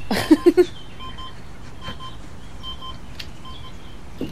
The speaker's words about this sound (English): Oh, something's beeping.